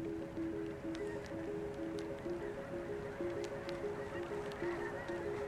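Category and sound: bird, flock of geese honking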